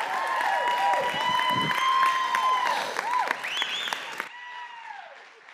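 A church audience applauds one morning to welcome a couple, a dense, steady wash of clapping with a few cheers and held musical tones underneath, fading out toward the end.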